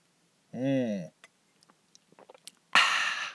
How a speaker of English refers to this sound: I'm going to take a sip of my coffee right now because voice is getting a little weird. This is the very first time I've ever actually drank anything while I'm doing an episode. And I'm going to do that right now.